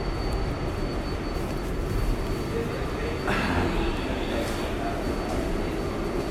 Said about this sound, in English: By the way, everyone, we're in pretty much an empty subway car. Except for that. Don't say it. I won't. This is the last stop. This is our stop.